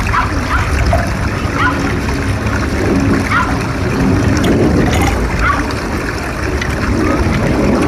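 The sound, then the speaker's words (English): Steady water splashing and trickling fills the whole stretch, a loud, continuous wash of liquid with small bursts of splatter rising now and then. “Okay, let's get some water so we can refresh.”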